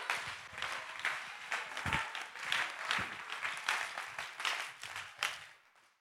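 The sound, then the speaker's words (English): An audience claps hands in praise, a dense, steady crackle of many hands that holds for about six seconds and then tapers off. “Go ahead and clap your hands and give him praise.”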